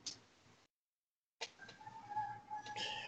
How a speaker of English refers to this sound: There's probably been some different roosters the whole time, man. This shit's so stupid. And it ain't like roosters ain't even personable or nothing.